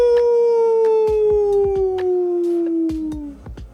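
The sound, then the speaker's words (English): A person tilts their head back toward the moon and imitates a wolf howl with one long, loud, sustained wail that slowly slides down in pitch, accompanied by a few scattered soft thumps in the background. “1, 2, 3, and tilt your head back to look up at the moon and let out a howl.”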